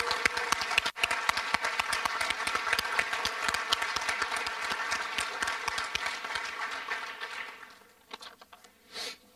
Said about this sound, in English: Let's give a round of applause for these recipients.